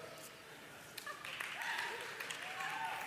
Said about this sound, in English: You know you suck. What are you applauding?